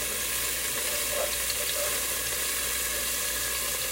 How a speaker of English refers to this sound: My garlic has been heating up and sizzling for a minute now, so I'm going to add my seasonings.